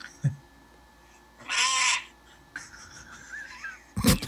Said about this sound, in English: The majestic American crow. Stunning.